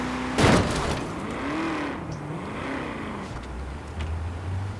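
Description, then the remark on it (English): A video game car engine drones steadily, its pitch swinging up and down as the vehicle drives and turns, with a sharp crash-like burst near the start and a low rumble throughout. “Okay, can you not do donuts? I'm trying to drive here.”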